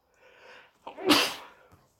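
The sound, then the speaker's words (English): A single loud sneeze caused by allergies: a soft indrawn breath followed by a sharp, explosive burst that tapers off quickly, with no talking around it. “Sorry again. Allergies, you know.”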